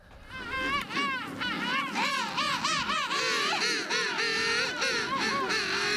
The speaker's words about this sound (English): Well, those are obviously birds, correct? They are, yeah. Okay, I'll go with what Kevin said. He said doves. No. He said lovebirds. No. So it's a whole bunch of the same type of bird. It is. It's a whole flock of the same bird.